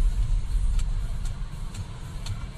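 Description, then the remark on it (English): A car engine idles with a steady, low rumble while waiting for the car ahead, a Kia, to turn on a little country road with traffic coming; a faint, regular ticking repeats about twice a second above it. No one speaks. “And we're waiting for the car to turn. Suddenly there was like a whole bunch of traffic coming down this little country road.”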